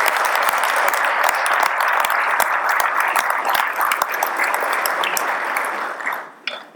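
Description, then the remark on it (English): Sustained audience applause for state legislators Representative Leslie Osborn, Representative John Paul Jordan, Senator Kyle Loveless and Senator Lonnie Paxton: a dense steady patter of many hands clapping at an even volume for several seconds, then thinning out and fading toward the end. “Would you please give them a round of applause?”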